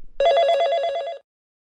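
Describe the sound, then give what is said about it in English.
A telephone rings once in a single loud, trilling burst lasting about a second, clear, then cuts off to silence. No one speaks. “Remember, that phone call could save someone's life.”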